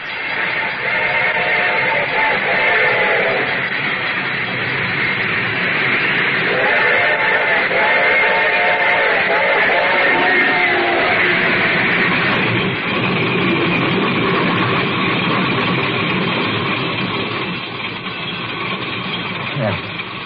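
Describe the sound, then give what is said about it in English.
A train rumbles steadily while its whistle sounds in two long, chord-like blasts, the first briefly and the second longer, over a constant loud mechanical clatter with a ringing bell. “The train was coming closer. I could hear its bell ringing and the cry was whistling.”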